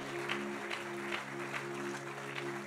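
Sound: audience clapping hands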